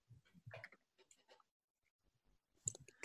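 Quiet, irregular bursts of keyboard typing, clusters of soft clicks and taps, pausing for about a second before a louder flurry of keystrokes near the end.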